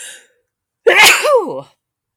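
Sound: sneeze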